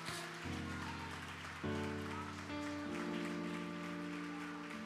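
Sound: audience hand clapping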